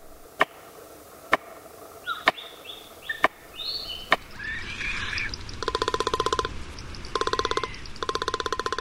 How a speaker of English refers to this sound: A tree banged with a stick held in a beak, palm cockatoo.